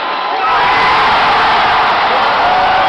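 A huge arena crowd at the last Sonics game in Key Arena roars continuously, chanting "Save our Sonics!", a dense wall of cheering and shouting voices that swells after a brief moment and stays loud throughout, with no distinct individual words.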